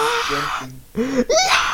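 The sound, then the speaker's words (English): A voice imitates a gym workout scream: a strained, moaning wail that breaks off briefly, then returns as a louder, rising cry with shifting pitch. “And like people scream like that just to get attention.”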